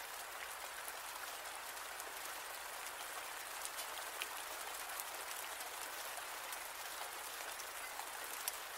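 Steady rain falls throughout, a dense, even hiss of countless drops with faint, scattered patters standing out now and then. No voices, just the constant wash of rainfall.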